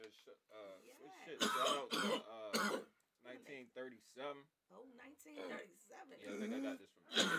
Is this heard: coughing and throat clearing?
yes